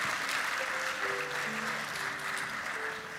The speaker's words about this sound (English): Hey, can we give my grandfather a round of applause?